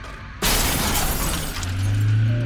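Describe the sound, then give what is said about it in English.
A sudden, loud crash of shattering glass and crunching metal as a car hits a tree erupts after a brief near-silence, sustaining as a dense, noisy clatter with a low grinding groan rising toward the end. “The sound of my daughter's screams echoed all around before giving way to the shattering of glass and the loud crunch of deforming metal.”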